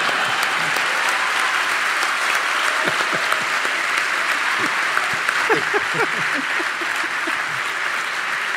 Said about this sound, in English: Round of applause for Chuck Todd.